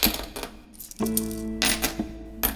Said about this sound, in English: Shawnee separated the coins into piles and then stacked them on the bedside table.